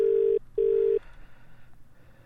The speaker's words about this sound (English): Here we go. Try again. Here we go. It's ringing. Do we leave a message this time?